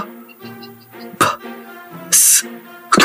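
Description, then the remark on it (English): A raspy, phlegmy cough-like throat noise sounds three times, with a hissy middle burst, separated by steady, hoarse tonal vocal hums. No talking. “It's almost like a cough, like a phlegm in your throat, getting it.”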